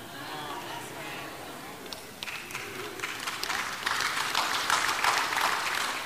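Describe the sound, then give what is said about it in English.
A crowd, mostly older people, breaks into applause that swells from scattered claps into steady, dense clapping, with a faint murmur of voices underneath. “I'm looking at the people who are clapping, and most of them are older and wiser and have been there.”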